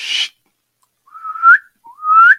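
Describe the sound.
A short breathy rush, then two rising whistled notes imitating a wood duck's call, each sliding upward and ending sharply, fairly loud with a brief pause between them.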